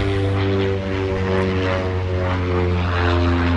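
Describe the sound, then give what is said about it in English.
A propeller aeroplane drones steadily overhead, its low engine hum loud and continuous with strong harmonic tones throughout, no talking heard. “Excuse me, the aeroplane.”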